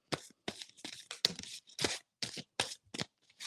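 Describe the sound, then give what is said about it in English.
A deck of tarot cards is given a quick shuffle in a series of quick, crisp riffling bursts with short pauses between them, papery and fairly loud against a quiet background. “let's switch gears and let's play with our tarot cards. I am being strongly encouraged to talk to you or to pull three cards.”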